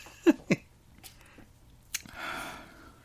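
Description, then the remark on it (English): Someone takes a drink of bitter stout beer: two quick, wet gulps, a few faint swallowing clicks, then a soft breathy exhale. No talking. “I mean, let me take one more drink and I'm going to try to have an open mind.”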